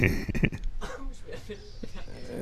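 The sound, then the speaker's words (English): Two quick, harsh coughs near the start from a person who has just hit a vape, the vapor going through the throat into the nose the wrong way, followed by quieter throat-clearing sounds and faint muffled voices in the background. “Oh, you just coughing all over yourself?”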